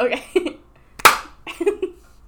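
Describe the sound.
A single sharp hand clap, made to sync a recording, cracks out loudly in the middle, with soft murmured voices before and after it.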